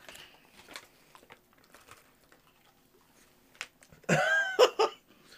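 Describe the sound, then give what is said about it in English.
Faint, scattered crinkles of a wrapper give way to a loud, brittle crunch as a cookie is bitten, followed by a couple of sharp cracking bursts. No one speaks. “That one had a good crunch.”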